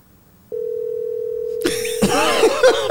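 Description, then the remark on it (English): A steady electronic phone ringing tone begins abruptly and holds unbroken as a call to a man's son, placed from a gate, goes unanswered, while loud, busy noise with voices swells in over the second half. “Yeah, cause he gonna answer his phone.”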